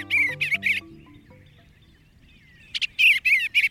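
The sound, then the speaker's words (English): Tree swallows give bright, liquid chirps in quick bursts, a cluster at the start, a quiet gap, then another lively run of twittering calls. “It's a wistful moment when your backyard swallows or bluebirds depart each fall, like the tree swallows we're hearing now.”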